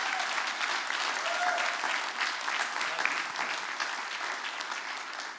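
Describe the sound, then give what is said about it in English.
Sustained applause from a large crowd for Pastor Emily of the youth ministry, dense and steady clapping filling the whole stretch with no one speaking over it, tapering only slightly near the end. “But if you would, just give a huge round of applause for Pastor Emily over our youth ministry.”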